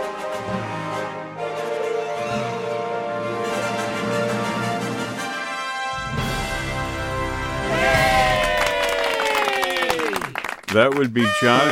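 A brassy fanfare of loud sustained chords builds steadily, then ends with a party horn's wobbly, sliding squeals rising and falling in pitch over the final few seconds.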